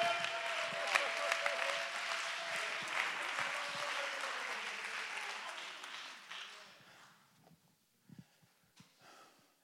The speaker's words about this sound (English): Clap your hands and lift your voice and give God the praise.